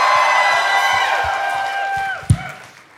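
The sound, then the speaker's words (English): A live audience cheers and whoops loudly for about three seconds when asked to make some noise for fried chicken, overlapping voices rising and falling in pitch, with scattered low thumps and one sharp bang near the end before the noise fades. “Y'all can make some noise for fried chicken.”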